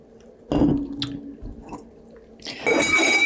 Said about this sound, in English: But I'm thinking that I'm going to drink some more out of this and then pour some more of the Pellegrino in there, because the Pellegrino does have that clementine sort of citrus in there.